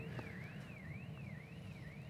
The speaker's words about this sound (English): Sounds like there's an alarm going on outside. Amen. Don't worry, the guys will attend to that quickly.